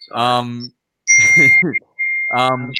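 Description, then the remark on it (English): A mobile phone rings with a loud electronic ringtone, playing three short melodic bursts separated by brief pauses. “But someone's phone's going off.”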